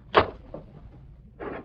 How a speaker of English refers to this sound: Quick, in this closet. It's the only hiding place there is. Close the door.